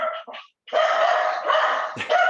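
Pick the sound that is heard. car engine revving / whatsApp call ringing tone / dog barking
dog barking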